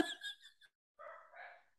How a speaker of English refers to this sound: Literally just set my dogs off.